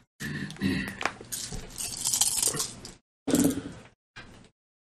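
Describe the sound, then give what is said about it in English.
A powered-down door with an electric lock in a ward creaks and grinds open for about three seconds with a rattling, mechanical texture, then falls silent before two shorter scraping bursts. Fairly loud, with no voices. “You start to open the door, and the ward starts to sort of frazzle.”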